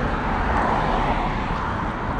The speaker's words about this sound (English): You can hear the cars, guys. Yeah. We're walking right now under, is this 87 or 280? Or yeah. I think it's 87. Yeah. We're right under 87.